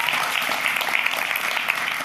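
A crowd applauds steadily, a dense, even patter of many hands clapping at a loud, sustained level with no pauses or voices breaking through.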